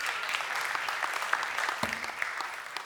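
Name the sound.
audience clapping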